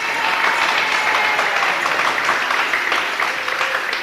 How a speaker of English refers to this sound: Give him a clap.